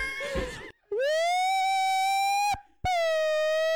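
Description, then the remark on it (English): A voice imitates an ambulance siren with two loud, sustained wailing tones, the first rising and holding, then a brief pause before the second begins; a short burst of noisy chatter comes first. “Well, I did an ambulance. Wee wee wee wee.”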